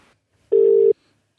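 A single short electronic telephone ring tone as a radio phone call connects live on Channel 4 for an interview about Loopfest, a steady buzzing beep lasting under half a second, clear with silence on either side.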